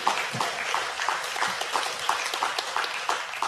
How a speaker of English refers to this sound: And we really, yeah, you can clap your hands. That's okay.